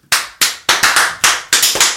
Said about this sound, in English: Standing, and all I had to do was start the clap. Happy to do it.